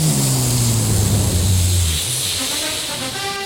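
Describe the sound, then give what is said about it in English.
A voice imitates a jet plane landing: a loud, breathy roar with a low hum that slides downward, then thins into a steadier hiss over a few seconds. “All right, there it is. That's the Jet landing.”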